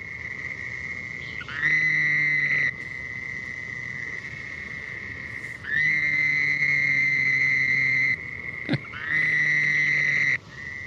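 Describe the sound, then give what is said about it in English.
A Fowler's toad gives three nasal, buzzing waaah calls, each one to two seconds long and the middle one longest, over a steady high trilling chorus of other calling frogs or insects. “Earlier in the show, we were talking about the Fowler toad, and I think Java found the call on that one.”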